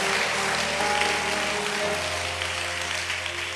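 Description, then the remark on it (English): A crowd claps steadily and loudly while many voices shout and cheer together in response to a call to clap hands and shout, the noise holding at an even level throughout with some sustained vocal tones rising above it. “Clap your hands and shout, it will happen, it will happen.”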